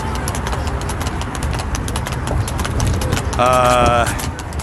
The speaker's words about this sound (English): So can we just play the horse running down just because I need to? Oh, there he is running down.